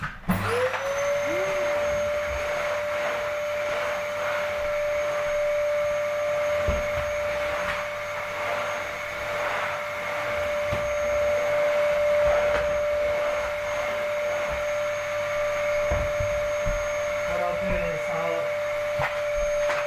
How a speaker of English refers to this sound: Perfect vacuum. It's going to be loud on that microphone. I'm really sorry. This is what it sounds like. It sounds like a jet aeroplane, like a jet engine.